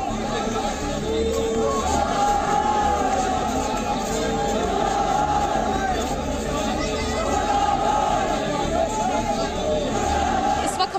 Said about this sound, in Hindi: ये gate number एक है जामा मस्जिद का, उसके ठीक बाहर यहाँ पे इस वक्त भीड़ है, फिलहाल जो पुलिस है वो पहुंच चुकी है और इन्हें यहाँ से हटाया जा रहा है।